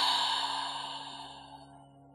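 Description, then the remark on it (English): A slow, deep exhale during a breathing exercise, breathy and airy, starts fairly strong and gradually fades out over about two seconds. It's alone, with no talking. “Breathing in from your lower abdominals, coming up into the heart center, creating this space in your body, letting go of tension on the exhale.”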